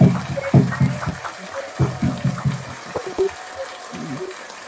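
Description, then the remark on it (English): A crowd applauds for the Holy Ghost, the clapping coming in loose, uneven bursts that swell and fade, with a muffled quality and a faint background murmur underneath. “Applaud for the Holy Ghost, my brother, my sister.”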